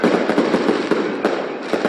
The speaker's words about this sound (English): Fireworks on the night the Christmas lights went on in Manger Square in Bethlehem, a different kind of celebration of the season.